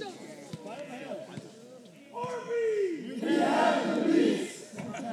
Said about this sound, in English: As you can see now, the Baco crowd trying to distract the shooter as the second one misses.